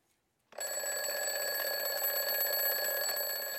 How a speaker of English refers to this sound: Alarm clock makes a sound many of us hear every morning. Probably your alarm clock doesn't make that sound anymore, right?